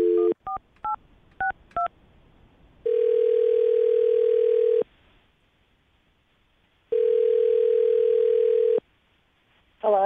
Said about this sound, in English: All right, well, I'm going to dial her phone number right now, get her on the phone, and see if we can find out why she isn't getting back to you, okay?